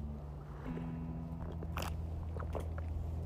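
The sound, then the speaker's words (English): Wet slurping and mouth noises come in a few short bursts over a steady low hum, with no one talking. “Sorry for my slurping.”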